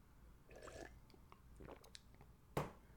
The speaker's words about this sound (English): Quick sip of water, boss. Don't mind me, boss. Little water break.